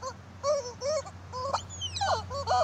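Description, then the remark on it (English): A horse gives a series of short, arching, moan-like cries, then one long wail that slides downward in pitch before more warbling calls. A steady low hum runs underneath, with no talking. “I gotta shoot this horse if it doesn't stop making this noise.”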